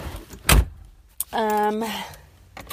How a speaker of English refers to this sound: Starting up the car in Haines, Alaska to start my trek all the way to Boston to interview Quinn.